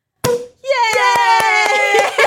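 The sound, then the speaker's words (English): A champagne cork pops with a sharp, loud burst, followed by a brief pause and then a long, high-pitched vocal squeal punctuated by a series of quick, rhythmic claps. “Well, we were going to have Prosecco, but turns out for the first time in my life I can't open a bottle of champagne.”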